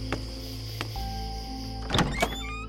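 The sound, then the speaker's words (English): A house's front door opens with a couple of light latch clicks, then a louder rattling clunk and creak near the end, all over a steady low mechanical hum. No one speaks. “Entering through the front door, she was met with a dim interior”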